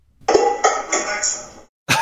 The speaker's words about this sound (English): So that sounded like probably me putting pots and pans away or like emptying the dishwasher.